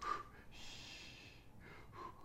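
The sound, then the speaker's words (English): A voice imitates heavy, labored breathing: a long, loud rasping breath followed by shorter huffing gasps, breathy with no words spoken. “Actually, I meant to say the breathing I was doing.”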